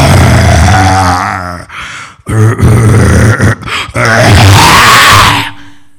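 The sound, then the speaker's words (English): A man's voice imitates a lion in Noah's ark saying good morning, with a series of loud, gravelly growls and grunts, rising in bursts with brief breaks, ending in a long rasping roar that fades out. “That's a lion saying good morning.”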